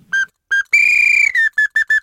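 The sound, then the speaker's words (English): A whistled imitation of a song sparrow song: two short clear notes, a longer pulsing buzzy trill, then five even, evenly spaced notes, all at a steady high pitch and fairly loud. “Patterns in Songs of the Song Sparrow”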